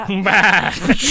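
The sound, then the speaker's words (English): A person's voice does a wavering, nasal bleat in imitation of a sheep, one short quivering call delivered fairly loud. “I sheepishly walk away. As not a sheep? As a sheep this time.”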